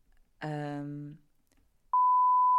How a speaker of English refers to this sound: Oh, you can just say it and then beep it out, please.